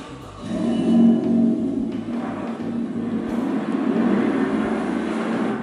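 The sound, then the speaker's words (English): A steady engine rumble, like a car driving past or along, fills the whole stretch with low droning and road noise at a moderate, constant level, with no voices. “She took the car.”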